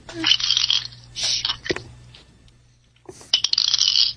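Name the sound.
dice rolling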